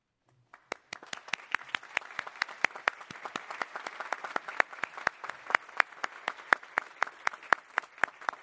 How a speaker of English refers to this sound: Thank you. Now here's the thing. We don't just want to clap for those who are new to this place.